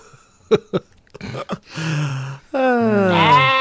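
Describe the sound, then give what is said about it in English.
A few short knocks give way to two loud sheep bleats, the second longer and wavering, with no talking over them. “I was like, I need to do that, but I need to find a sheep first.”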